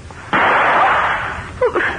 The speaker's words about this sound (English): That sounded like a gunshot.